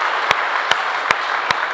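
An audience claps for Jesus loudly in a dense, steady roar of applause, with four sharper, punchier claps standing out at an even beat. No one speaks.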